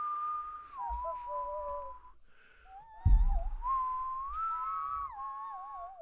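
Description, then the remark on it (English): A person whistles a short wavering melody, the song of Gizmo the Mogwai, sliding and trilling up and down like a creature's cooing song, fairly clear, with a brief thump partway through and no talking. “It's the whistle. His song. His like. From the whistle.”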